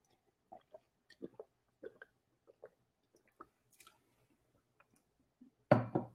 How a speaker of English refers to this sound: All right. That was a nice, refreshing sip.